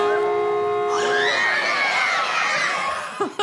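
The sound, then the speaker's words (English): A water park wave pool horn signalling that waves are coming: a steady, buzzy horn blast holds one pitch for about a second, then a crowd of children and adults in the pool erupts in excited cheers and screams that carry on over its tail. “And it happens every time when you're at a water park, you hear the horn that signifies waves coming.”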